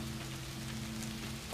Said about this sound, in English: We are recording live out here in the rain on this cool October early afternoon.